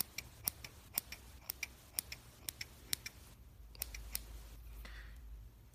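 Small scissors snip repeatedly in quick, crisp clicks as they trim a person's hair, fairly steady in rhythm, with a few brief pauses and a low hum underneath.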